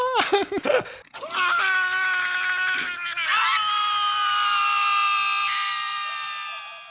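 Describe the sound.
The characters Krace and Jewel scream together in a TV scene: after a brief choppy vocal burst, two voices let out long, sustained, high-pitched wails lasting several seconds, loud, overlapping and rising in pitch midway.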